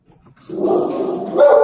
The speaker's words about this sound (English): And Berkeley, the dog, making an appearance in the Tech Situation Room tonight.